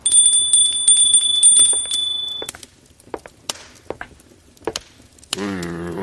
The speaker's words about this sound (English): Well, hang on. Let me just ring the bell.